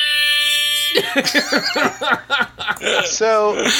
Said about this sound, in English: You know what's great about this air horn, by the way? It has somehow it has, like, a repeat built into it. So the more you slam the button, the more you get. So you can slam it as much as you want, by the way.